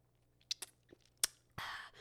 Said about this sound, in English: And I do have my little decaf because this is in the afternoon and I do not drink caffeine, full-blown caffeine in the afternoon. So we're going to take a little sip of decaf.